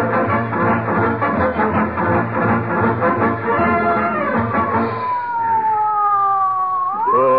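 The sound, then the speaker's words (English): A loud ambulance siren wails as the ambulance rushes a patient to the hospital, its steady tone slowly sliding downward before sweeping back up at the end, with no voices over it. “Call an ambulance.”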